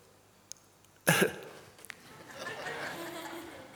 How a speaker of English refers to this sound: A cough in heaven. Can you have a cough in heaven? Maybe a clearing of the throat.